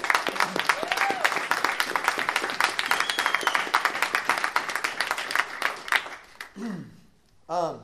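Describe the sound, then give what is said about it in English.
An audience applauds with dense, steady clapping and a few scattered whoops for about six seconds, then the clapping fades and a voice begins speaking. “So we love you guys, and we want to just acknowledge you real quick with a round of applause, just that we love you so much.”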